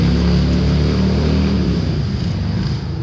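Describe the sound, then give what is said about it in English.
A loud motorcycle engine rumbles, its deep throaty drone holding steady and rising slightly in pitch as the rider pulls the clutch in and gives it more gas, with no voices over it. “He had to hit that clutch in and give us a little more gas.”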